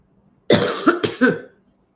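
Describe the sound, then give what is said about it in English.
A short burst of harsh coughing, three or four rapid hacks run together in about a second, loud and raspy, with silence before and after. “has the cough, being mean to me when she feels bad.”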